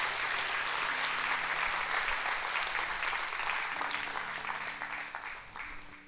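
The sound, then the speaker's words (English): A large church audience, standing, claps steadily, a dense wash of overlapping hand claps, with faint organ-like tones sustained underneath before the applause gradually tapers off. “Clap your hands for the word if you receive it tonight.”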